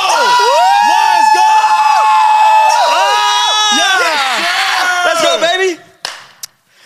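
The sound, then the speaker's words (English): A group of people yells and cheers together at full volume for several seconds, many overlapping voices rising and falling, before the noise cuts off abruptly. “Let's get one big yelling.”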